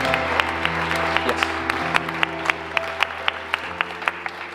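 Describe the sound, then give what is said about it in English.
An audience applauds the Lord Jesus Christ, a steady wash of clapping with sharper, evenly spaced claps cutting through in a regular rhythm, over a low sustained hum of held tones. “Let's give the Lord Jesus Christ a round of applause.”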